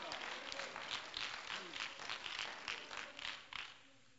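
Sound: audience clapping hands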